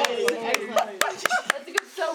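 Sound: hand clapping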